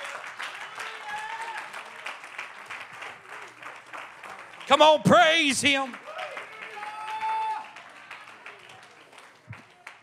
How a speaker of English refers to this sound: Oh, clap your hands and love Him.